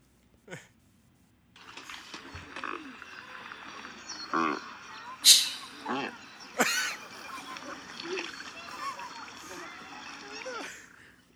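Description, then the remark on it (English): An American white pelican calls near water: a dense run of hoarse, honking grunts that keeps going for about ten seconds, with a few louder bursts standing out from a busy colony-like background. “It is actually an American white pelican”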